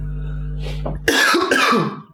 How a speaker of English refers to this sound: I don't know why I'm coughing so much. This is really strange. I'm really sorry about this, guys.